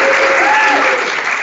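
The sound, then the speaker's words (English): A live audience applauds loudly and steadily for Dean Diamond, a dense wash of clapping with a faint whistle-like tone rising and falling over it, holding strong for the whole second and a half. “And a special thank you, a round of applause for Dean Diamond.”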